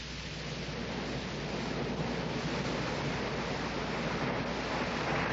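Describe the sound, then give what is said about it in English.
Sea waves wash against the shore at Lowestoft in a steady, continuous roar, fairly loud, with no distinct breaks between surges and no voices. “I decided that that day, after the falling of the picture, was a day to be spent by the sea.”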